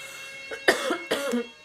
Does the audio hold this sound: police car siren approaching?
no